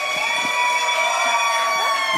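An audience at The River cheers and whoops loudly and steadily to welcome a poet as speaker, a dense wash of voices with shrill, sustained tones riding over it, no single person speaking.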